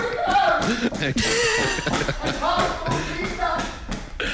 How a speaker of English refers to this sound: Oh, the clap of leather-soled shoes if someone running is one of the worst sounds. Here he goes.